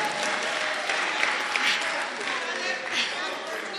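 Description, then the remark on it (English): A crowd applauds steadily for a few seconds, a dense, even wash of many hands clapping at once with no single claps standing out and no pauses. “Clap for Siabonga.”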